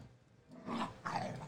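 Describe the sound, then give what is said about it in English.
A small dog growls in two short, rough bursts, one right after the other, fairly quiet, with no talking over it. “Look at this guy, bro. What's wrong with him? You're a small dog, bro.”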